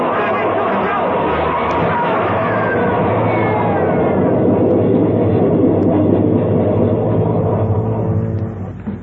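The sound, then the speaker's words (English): A subway train roars through a tunnel, a loud, dense rumble with rattling wheels that holds steady for nine seconds before starting to ease off, with faint voices buried beneath. “there's a train coming through.”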